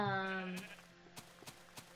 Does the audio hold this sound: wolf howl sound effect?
no